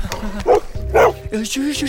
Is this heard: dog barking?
yes